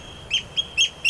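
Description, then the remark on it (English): A gull calls in quick succession, four sharp, nasal, high-pitched cries evenly spaced, clear against a faint background, with no talking. “I think he's responding to that gull, but I'm not sure.”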